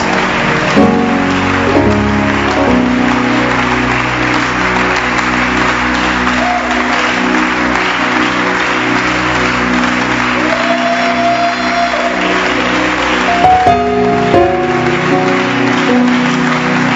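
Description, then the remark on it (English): A church audience claps for Jesus, loudly and steadily, a dense wash of hand claps that holds for the whole stretch, with sustained musical tones and a few faint shouts mixed underneath. “Show it with a louder hand clap unto the Lord.”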